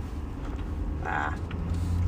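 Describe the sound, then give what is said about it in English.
Steady low road rumble inside a moving truck cab, a continuous droning hum at moderate level with a brief brighter rustle or murmur partway through. “All right, welcome back to another episode of talking in my truck to myself.”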